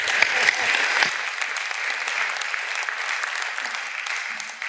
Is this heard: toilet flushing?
no